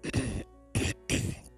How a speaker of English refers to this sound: Oh, excuse me, I had to clear my throat.